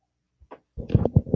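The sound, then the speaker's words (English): A brief low thump and a short gurgle, then a loud, drawn-out burp into a microphone with a guttural, pulsing rasp that swells in a few throaty bursts. “Yes, I just burped into the mic.”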